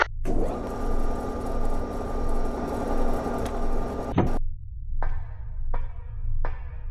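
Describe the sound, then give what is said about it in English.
A steady mechanical whir with a faint hum runs for about four seconds and ends in a sharp clunk, followed by three short hissing bursts, like spaceship shuttle doors opening. “Shuttle doors opening.”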